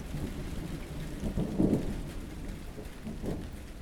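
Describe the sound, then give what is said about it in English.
Steady rain hisses throughout while low, rolling thunder rumbles, swelling twice before fading back under the downpour, on the first rainy, cloudy day in September. No one speaks. “It's the first rainy, cloudy day in September.”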